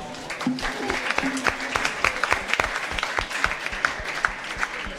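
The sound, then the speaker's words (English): An event audience applauds steadily at the Blueprint co-working space in Hong Kong to thank the hosts, with dense overlapping claps forming a continuous, moderately loud patter for the whole stretch. “We get a quick round of applause, please.”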